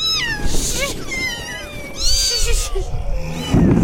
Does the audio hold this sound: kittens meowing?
yes